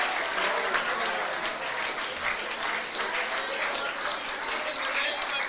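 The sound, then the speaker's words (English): A church audience applauds and cheers for the Lord, dense overlapping clapping that holds at a steady, fairly loud level for several seconds, with crowd voices blended faintly underneath and no pause or fade. “Let's give the Lord a big cheer, church.”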